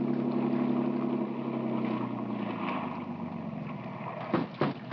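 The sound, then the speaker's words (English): A motorboat engine runs steadily with a low droning hum that gradually shifts in pitch, followed by a couple of brief thumps near the end; no one speaks. “Keep this boat alongside.”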